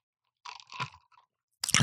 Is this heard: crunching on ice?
yes